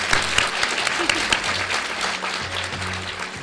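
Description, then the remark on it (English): A crowd breaks into sustained applause for Lynne Ramsay, dense overlapping clapping at steady loudness throughout, sounding like many people clapping together. “Huge round of applause, please, for Lynne Ramsay.”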